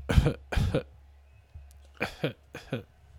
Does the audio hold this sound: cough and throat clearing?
yes